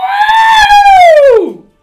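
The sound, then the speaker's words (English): A single loud, drawn-out electronic-style scream that holds high and then swoops downward before cutting off, the classic R2-D2 droid shriek, apparently imitated by a voice, heard alone. “And all of a sudden, Vex, you hear the R2-D2 classic scream of.”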